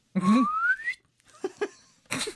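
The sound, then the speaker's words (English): A voice imitates a Carry On-style swanee whistle, one loud upward-sliding squeal lasting under a second, followed by a few short, breathy vocal bursts. “As she bends over to pick the ambassador up, can we have like a Carry On Swanny whistle?”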